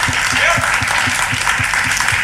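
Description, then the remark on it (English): A crowd applauds a singer steadily, a dense wash of clapping that holds at an even, loud level throughout, with rhythmic low thumps of stamping or rhythmic clapping pulsing underneath. “If we can have a round of applause for ….”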